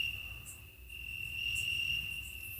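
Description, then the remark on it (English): Crickets chirp in a steady, continuous high-pitched trill, fairly loud, with a soft low rumble of background noise underneath and no voices. “I think the crickets are just better than these jokes.”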